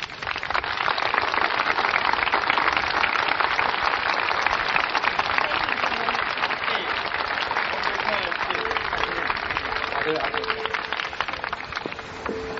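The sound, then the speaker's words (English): Steady, dense rain pours down outdoors on a rally, a loud unbroken hiss of drops that holds level from start to finish, with faint voices murmuring underneath toward the end. “Before Bob Avakian comes on, I want to announce, first of all, that a little rain never hurt anybody.”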